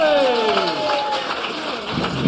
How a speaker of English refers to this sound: And now it's time to introduce our panel, so keep the applause going.